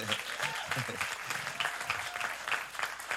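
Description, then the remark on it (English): An audience applauds a pastor in a steady, dense wash of clapping that holds evenly for about three seconds, with faint voices mixed underneath. “I think we should applaud him for that.”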